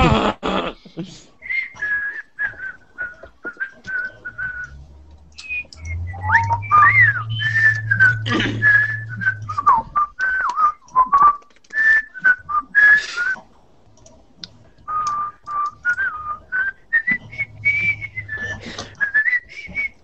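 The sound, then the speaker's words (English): Someone whistles a wandering melody for about twenty seconds, fairly loud, with short breaks between phrases and a low hum underneath in places. “Damn, I can't whistle when I'm smiling.”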